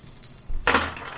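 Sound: dice being rolled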